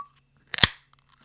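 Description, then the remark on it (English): A drink can snaps open with a sharp pop and a short fizzing hiss, followed by a few faint, quiet sounds of a sip; no one talks. “There we go. The pause that refreshes. No. Sip of sunshine, baby.”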